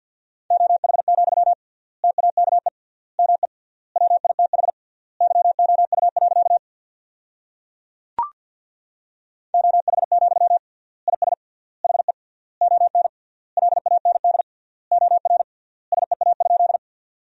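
Rapid Morse code at 50 words per minute, with triple word spacing, sending sentences built from the 500 most common words: a steady mid-pitched tone keyed in fast bursts of dots and dashes, with clear gaps between words, a brief pause and a single click midway.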